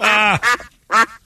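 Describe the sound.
A duck quacks loudly: a long, raspy nasal call, then a quick shorter one, and after a brief pause another quack. No one speaks.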